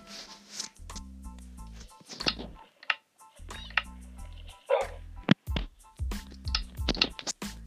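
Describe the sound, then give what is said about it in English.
A dog barks several times in short bursts over steady low background music, the barks sharp, with some clicking sounds mixed in. “Don't you dare bark at me.”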